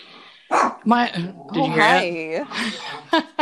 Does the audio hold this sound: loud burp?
no